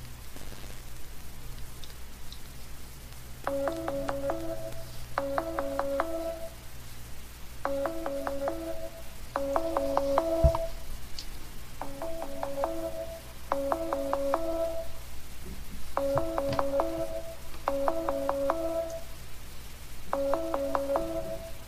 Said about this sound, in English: All right. Let's see. Let's see if he'll answer the phone. There's no way.